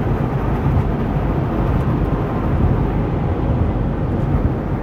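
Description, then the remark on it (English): A big semi truck's engine roars steadily on a one-lane highway, a loud, deep rumble that holds constant throughout with no voices over it. “Listen to that big old truck.”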